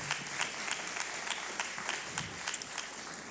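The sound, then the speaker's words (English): An audience at Capital Church applauds the piano player after the playing, with a steady wash of many hands clapping, sharper individual claps popping out now and then at a moderate, even level, with no talking over it. “Come on, give a hand clap to my friend playing the piano.”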